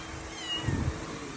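A stray kitten on the side of the road in Louisiana gives a soft, short meow, with a brief upward wavering cry rising briefly above a steady low background hum, then fading.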